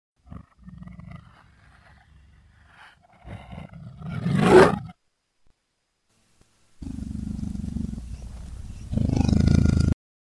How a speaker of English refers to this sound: Here, let's try this out. Here is a leopard growl. Now here's that leopard growl reversed.